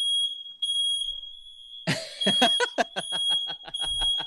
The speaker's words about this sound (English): Smoke alarm because of the hookah. Hold on. Oh, my God.